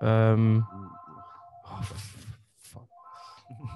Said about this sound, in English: Sorry guys, my phone. I'm gonna have to mute. Oh, the house phone. Oh damn. On a Sunday as well.